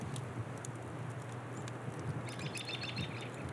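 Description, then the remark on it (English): Faint bird chirps flutter, growing a bit busier toward the end, over a steady outdoor hiss of wind and a low rumble, at a windy cabin outside Big Timber, Montana, up the Boulder River Valley. No one speaks. “But I think you can hear some birds and shit.”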